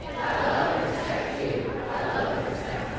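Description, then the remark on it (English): A large audience at a celebration show cheers and claps in a steady, dense roar that fills the whole stretch without pause, loud, with no clear voices standing out from the crowd. “But 3 months before the last applause and cheers, the event was just an idea with a lot of planning left to do.”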